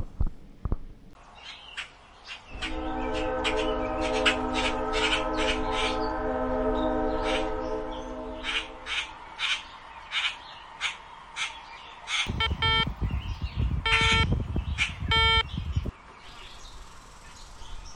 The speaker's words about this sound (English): All right, we're here in Brackenridge Park. We've arrived. Yeah, we're sitting by the train tracks where the train comes out of the tunnel, by the little, like, tiny forest where all the cats live.